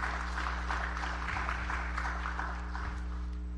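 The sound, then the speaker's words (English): An audience breaks into sustained applause, affirming that they believe they are God's masterpiece: a dense, steady patter of many hands clapping at an even loudness for several seconds, with a low electrical hum underneath and no one speaking. “Can you give him a good round of applause today if you believe that?”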